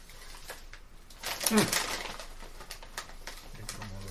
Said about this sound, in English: Effing bird?